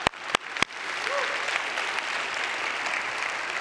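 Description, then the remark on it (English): Three sharp, scattered claps open, then a church audience breaks into dense, steady applause that holds at an even level to the end, with no one speaking over it. “Well, that was about a haphazard clap, so the rest of us, let's put it together.”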